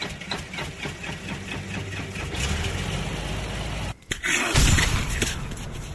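An engine rumbles and idles with a steady, rhythmic chugging, cuts out for a split second, then roars back louder as it catches and revs up. No voices.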